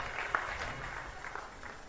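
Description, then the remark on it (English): A church audience applauds people as they leave to go with the pastor: a dense, steady patter of many hands clapping at once, fairly soft, with no clear voices over it, lasting about two seconds. “Clap for them as they go.”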